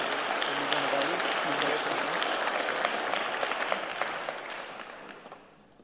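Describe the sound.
A round of applause from a church gathering at Greyfriars Church for the church treasurer: dense, steady clapping that holds for several seconds, then thins out and fades toward the end, with faint voices mixed in at the start.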